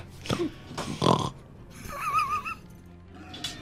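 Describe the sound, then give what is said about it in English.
A person imitates an angry pig, voicing boars, with a few gruff, throaty grunts and snorts in quick bursts, followed by a squealing, wavering oink, without other talk. “Angry pig. Pig noises. Yay, pig noises.”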